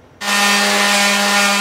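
A power sander switches on abruptly and runs steadily against the lumber of a wooden community sign being refurbished in Vancouver's Champlain Heights neighborhood, loud, a constant motor hum beneath a coarse, gritty hiss, with no talking.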